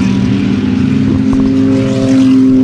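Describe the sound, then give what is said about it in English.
Race cars roll along at a steady, moderate pace on a pace lap, their engines holding a loud, continuous low drone without revving up. No one speaks. “As they go around for another pace lap, it's probably going to be a bit of pacing because they're still trying to clean up that accident down there.”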